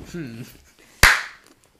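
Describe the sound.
A short voiced murmur, then after a pause a single loud, sharp slap of a man hitting himself in the face, with a crisp smack that rings out briefly.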